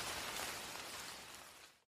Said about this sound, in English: Welcome to the Deep Sleep Sounds podcast. You're listening to Light Rain.